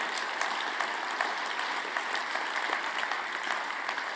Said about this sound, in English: And that's worth applauding. That's worth applauding.